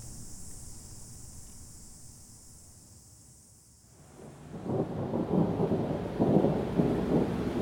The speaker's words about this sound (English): It started raining, first humid and earnest, then thick and committed. Steady rain means flooding means dread.